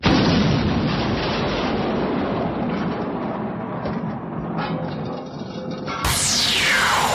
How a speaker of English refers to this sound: You're only supposed to blow the bloody doors off!